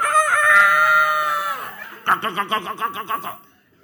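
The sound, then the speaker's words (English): A rooster lets out a long, loud crow, followed immediately by a rapid series of about eight excited clucks, clear with no talking. “When another chicken approaches another chicken, they're excited.”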